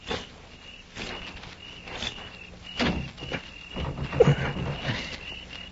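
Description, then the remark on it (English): Scattered footsteps approach, followed by a few dull knocks and rattles as a bolted door is tried. A steady insect-like drone hums underneath, and no one speaks. “I'm going to try the door.”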